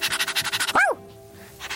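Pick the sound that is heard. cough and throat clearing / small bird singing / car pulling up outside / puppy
puppy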